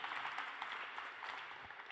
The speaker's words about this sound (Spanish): Let's give a hand to God. Un aplauso para Jesús.